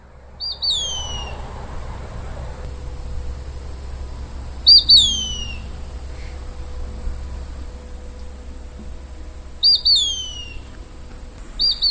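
A Mississippi kite, a crow-sized, mostly gray and black acrobatic raptor, gives its high, thin two-note whistle three times, spaced several seconds apart, with the second note slurring downward. A low, steady outdoor rumble sits underneath.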